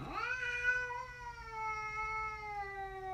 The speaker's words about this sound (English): Anybody want to hear the cat again? Here, let's have our daily dose of the cat. Where is it? Hey, buddy. Meow at me.